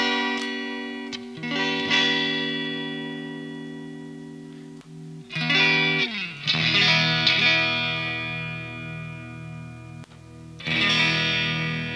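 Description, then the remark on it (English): An electric guitar, played on the amp's clean channel with the boost off, through a vintage open-back cabinet, strums a few slightly overdriven chords, each left to ring and fade before the next, with a warm, full tone and no talking. “So another cab. What do we got? Vintage open back.”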